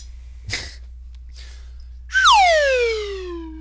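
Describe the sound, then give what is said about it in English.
A buzzy tone from a stylophone with freshly changed batteries, played with a little metal-tipped stylus, holds briefly, then slides steadily downward in pitch over about a second and a half, loud and rich in overtones, after a short noisy burst and a faint click. “It's called a stylophone, and I finally changed the batteries after unpacking it.”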